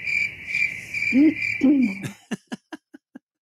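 A steady, high cricket chirring fills the first two seconds, with two low owl hoots over it, then a run of short knocking pulses that grow fainter and trail off.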